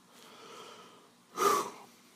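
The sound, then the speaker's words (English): Heavy, breathy panting of a sweating man in a descending elevator at night: a soft, drawn-out breath followed by one loud, sharp exhale, then quiet. No talking. “Frank stares up at the descending floor lights, sweat beading on his forehead, panting heavily.”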